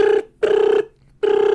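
A telephone rings loudly: a harmonic electronic tone in three quick bursts separated by brief silences. No one speaks.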